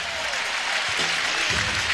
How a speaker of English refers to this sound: As expected and appropriate, he gets a nice round of applause.